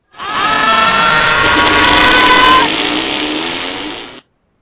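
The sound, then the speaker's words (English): A harsh, distorted scream effect, meant to be souls being dragged through the mud, loud and continuous for about four seconds, with a gritty, grinding texture and wavering tones, cutting off abruptly. “That's actually supposed to be souls being dragged through the mud.”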